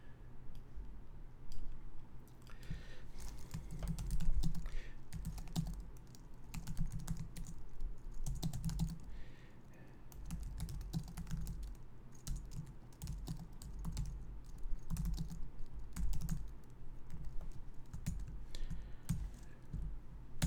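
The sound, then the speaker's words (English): Steady typing on a computer keyboard as someone types a couple of comments during a live broadcast, a dense run of quick clicks and key taps with brief pauses, continuing for about twenty seconds with no one speaking. “All right, just typing in a couple things in the comments over there.”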